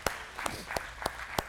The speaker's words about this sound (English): I got to 20, and I thought I was accomplished, and they're like, yeah, you can clap for 65 years.